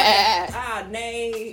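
A goat bleats in a loud, wavering cry lasting over a second, its pitch quivering and dipping midway before trailing off, clear with no one talking.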